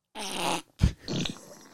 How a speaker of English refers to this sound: Alexa, can I have a random fart, please?